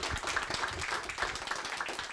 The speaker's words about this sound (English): I'd like to thank you very, very much, and I hope you all give Steve a big round of applause.